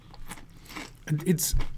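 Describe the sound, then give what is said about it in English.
A crunchy bite into a thick Guinness-and-chili-flavored potato chip, followed by a sharp loud crackle and a few chewing sounds, with a brief murmured voice just before the crunch. “It's a thicker chip. It has... Oh, it's great crunch.”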